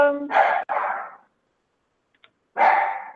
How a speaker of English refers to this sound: my dog is barking like crazy, and she never does, but go ahead.